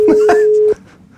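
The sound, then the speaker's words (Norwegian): A single steady telephone ringing tone sounds for under a second, then cuts off abruptly into quiet, with brief voice sounds overlapping its start; the call goes unanswered. “Han såpass perifer at han ikke synes det noe interessant å ta telefonen.”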